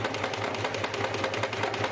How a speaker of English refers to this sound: It's a sewing machine. A sewing machine, ah, okay.